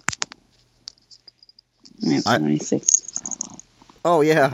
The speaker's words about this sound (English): Yeah, it's like I always think a cat purr is like a spinning top. You know, you get it spinning, and you know, you pet him, and the louder he purrs. It's like a spinning top.